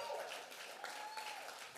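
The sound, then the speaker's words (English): Steady applause from an audience at Thrive for everybody who serves there, a dense wash of many hands clapping at an even level throughout, with a few faint tonal whistles or voices mixed in. “Do me a favor and give a big round of applause to everybody who serves here at Thrive.”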